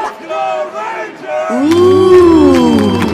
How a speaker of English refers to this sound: Crowd disapproves.